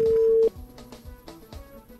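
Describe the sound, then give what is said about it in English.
A telephone call to a 3-digit number, the Old Mutual CABS contact center, ringing: one loud, steady mid-pitched ring tone lasts about half a second, then cuts off abruptly into quieter, rhythmic, music-like sound with no talking. “It's ringing, and all of a sudden, it just it drops in okay.”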